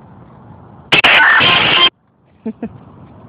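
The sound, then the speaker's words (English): A car horn blares loudly in one sustained blast of about a second, cut off abruptly, followed by quiet and two brief, fainter toots or murmurs, outdoors among cars where people are walking around. “We're just walking around. There's the cars out here.”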